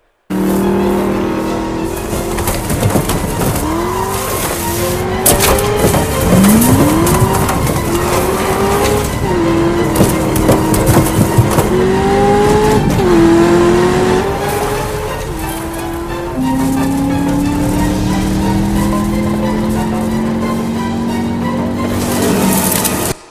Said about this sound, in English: So they're driving at like 80, 90, 100 miles an hour. One's in a Camaro, one's in a Vette, and they're flying through these cornfields.